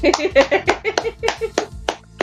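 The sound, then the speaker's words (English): A short round of applause given for a pun: roughly nine sharp, crisp hand claps at a quick, fairly steady rhythm, with faint vocal sounds underneath. “Round of applause for that pun.”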